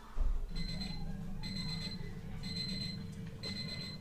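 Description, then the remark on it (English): Lucas Anderson's alarm clock rings at 4:55 in the morning in steady, evenly spaced bursts of high electronic beeping, about one per second, over a constant low rumbling hum. No one speaks. “Lucas Anderson signed in to work a few minutes early in the morning to work at 4:55 from his alarm clock.”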